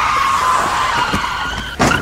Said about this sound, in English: Oh, you crashed into that police car! Well, you distracted me. I told you not to crash into a police car.